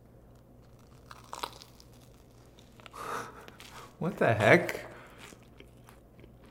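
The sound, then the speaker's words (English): Crunching as someone bites into a crisp air-fried marshmallow and chews, with a couple of loud crackly bursts near the end and a brief spoken exclamation. “It seems crunchy. It's so fluffy, yet so crunchy.”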